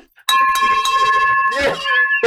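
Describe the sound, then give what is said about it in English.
A victory bell is rung loudly, struck three or four times in quick succession, its bright, high ringing tones overlapping and sustaining, before a brief burst of noisier sound near the end. “Ring that victory bell.”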